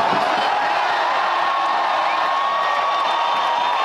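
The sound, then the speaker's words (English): An audience yells and cheers loudly and continuously for a few seconds, many voices blending into a dense roar of whoops and shouts. “If you think it's like selling out, let me hear you yell on that one.”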